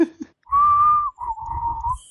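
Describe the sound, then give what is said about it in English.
A man's sad, weak whistle: two long, breathy notes, the second slightly lower and wavering, with audible airy noise underneath. Fairly loud, with no talking. “And then you hear just a sad whistle.”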